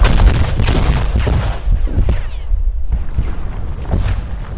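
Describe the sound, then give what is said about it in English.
A rapid series of loud explosions and booming blasts from the north face of a building, one after another, with deep rumbling low end and sharp cracks continuing throughout, no voices present. “I didn't want to be on the side of the building where the things were blowing up”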